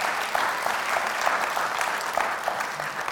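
A church audience claps steadily on a morning to thank the designer of a church graphic, a dense, even patter of many hands sustained throughout without pauses or voices.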